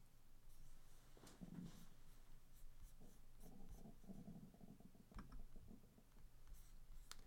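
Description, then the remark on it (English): Several sharp, light clicks of a computer mouse come at irregular intervals, some in quick pairs, fairly quiet over a low steady hum, as someone tries to share their screen. “Well, this is taking a lot longer than I anticipated, because I keep clicking on other things by accident.”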